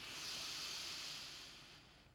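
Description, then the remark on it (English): A slow, airy inhale during a guided calming breathing exercise, a soft steady hiss lasting about two seconds that gradually fades, with no talking. “Breathing in.”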